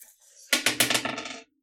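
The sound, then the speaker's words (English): Dice clatter across a hard tabletop without a dice tray, a burst of sharp clicks and bounces that quickly tumble to a stop. Fairly loud, with no voices. “I need to get a fucking dice tray.”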